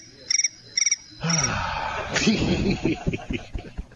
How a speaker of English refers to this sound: It's crickets going in my ears.